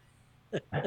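sneeze

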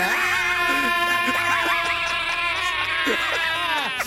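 two people screaming

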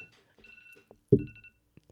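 timer alarm going off

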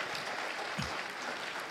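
applause

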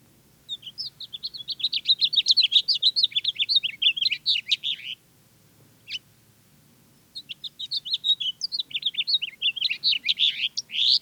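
house finch singing

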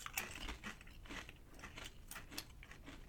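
crunching on potato chips

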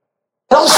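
sneeze

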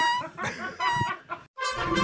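chicken clucking

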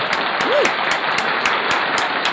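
clapping

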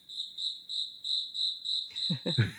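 crickets chirping

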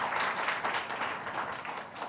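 audience applause

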